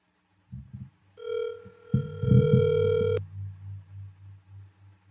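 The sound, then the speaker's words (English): A steady electronic telephone tone sounds for about two seconds over low thumping noises, then gives way to a soft, rhythmic low pulsing that fades out; no one speaks. “Let's see if we can call up”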